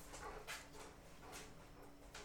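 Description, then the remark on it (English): A big brown dog whimpers softly, a few short, faint whines spaced out over a couple of seconds, with no one talking. “I wish anybody listening to this could meet this dog.”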